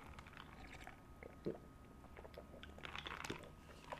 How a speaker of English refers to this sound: Got my little juice here. Sipping on juice. Just regular juice, everybody. Just regular juice.